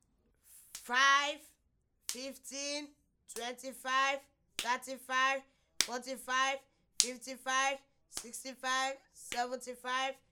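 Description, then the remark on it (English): Sharp hand claps land at a steady beat, roughly one per second, each paired with a voice counting by tens from 5 to 95 in a rhythmic chant, clear. “As you count, make sure you clap your hands together.”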